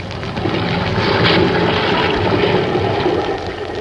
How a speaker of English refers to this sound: The schooner Spindrift is still fighting her way through a half gale in the Pacific. Black, ugly clouds are scudding overhead, and the angry waves rush at the little craft as though to engulf her.